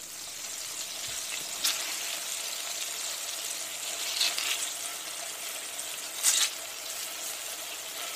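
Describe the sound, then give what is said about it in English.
Chicken patties sizzle steadily in a covered pan, cooking about 4.5 to 5 minutes on one side, a continuous bright crackling hiss with a few sharper pops and spits breaking through. No one speaks. “So I cooked them for about 4.5 to 5 minutes on one side, covered.”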